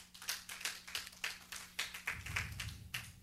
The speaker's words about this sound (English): Yes, if you want to clap, clap. People are listening, they will think that it's only one or two people here. Well, you are much more. So if you want to clap, you clap.